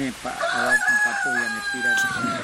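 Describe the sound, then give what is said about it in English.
A rooster crows loudly as it starts to rain, one long drawn-out call that holds steady for about two seconds, with lower, choppy vocal sounds running underneath. “I killed that damn chicken. Yeah, it is a little loud, isn't it?”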